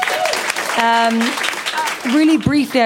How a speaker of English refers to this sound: So round of applause, please.